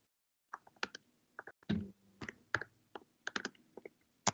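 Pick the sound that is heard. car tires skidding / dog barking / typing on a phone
typing on a phone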